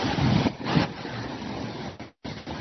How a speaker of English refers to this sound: And we're in King Street now. King Street, Twickenham Town Centre.